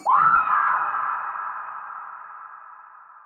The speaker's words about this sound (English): if the tunnel could be echoey, I am very much sure that Rainbow, at least, could maybe hear a distant, just blood-curdling scream.